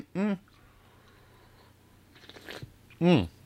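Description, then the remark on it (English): A short, wet slurp of someone sipping coffee, set between two brief voiced sounds from the same person. “That was a big slurp.”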